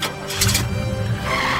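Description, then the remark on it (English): A car pulls away with a brief squeal of tires over a low engine rumble, fairly loud, the screech peaking early before the vehicle's noise settles and fades slightly. “And now that we're done hitting the road, let's get in the car and drive away.”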